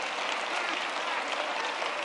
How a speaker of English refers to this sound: Let's give the Lord another hand clap. Come on now.